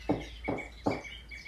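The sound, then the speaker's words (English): Three soft knocks on a door, evenly spaced about 0.4 seconds apart, each a short muffled thud over a faint steady background hum. “Three light knocks.”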